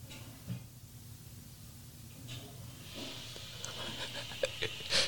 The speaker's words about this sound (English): Can you hear that? That's her flushing the toilet, dude.